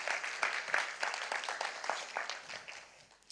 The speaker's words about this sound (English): So another round of applause. Come on.